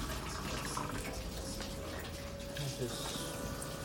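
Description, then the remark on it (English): An ice maker's pump hums just after being powered on, pumping water as the machine fills, while water runs and trickles continuously, with a faint constant tonal whine underneath and no pauses through the short stretch. “The pump is just running, pumping water.”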